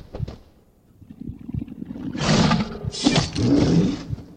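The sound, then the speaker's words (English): A bear in a video game battle: a deep, rumbling growl swells into two loud, breathy roars with harsh noisy upper tones, each lasting about a second, no voices over it. “Congratulations, you've killed the bear.”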